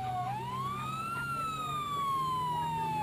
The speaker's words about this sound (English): Yes, it looks like a fire truck has just pulled up some 100 yards or so from our position.